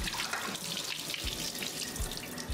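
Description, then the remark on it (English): Water pours steadily through a colander in a continuous rushing splash, fairly loud, with a few low thumps scattered through as it drains away, draining the excess water from rehydrated freeze-dried beef. No one speaks. “All right, we just have a colander here. I'm gonna pour that water through.”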